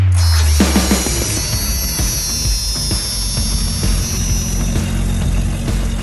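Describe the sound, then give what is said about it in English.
A Jeep Wrangler YJ 4-liter straight-six engine runs loudly and steadily for several seconds, a low rumbling drone layered with a busy mechanical rattle and ticking, with no one talking. “Brandon's car sounds. Wrangler YJ, 4 liter straight six.”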